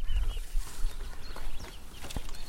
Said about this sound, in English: You can hear the marsh birds in the distance, given it large. Very moody. Very moody.